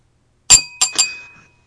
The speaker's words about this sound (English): You'll never guess it. What? It's your wine glass. Yeah, but what's hitting the wine glass?